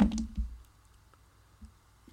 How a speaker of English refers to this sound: I've got two dice. Okay, in the dice tray, please.